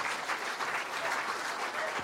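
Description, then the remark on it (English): A crowd claps steadily throughout, a round of applause for someone who helped the speaker with an example, a dense, even patter of many hands with no pauses or build-up, sustained at a moderate level for the whole two seconds. “a round of applause for helping me with this example.”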